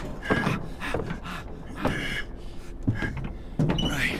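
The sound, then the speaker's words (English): The jammed door of a medical transport vehicle is forced open with Wolverine's claws: a few bursts of metallic creaking, scraping and crunching, with short grinding strains between them. “But the door's stuck. You can't get the... Coming in with claws! Move back!”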